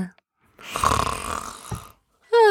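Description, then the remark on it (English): A single drawn-out, raspy snore, probably a person imitating one, rumbles for over a second, followed after a short pause by the start of a voice. “I think we should say bye before she starts snoring.”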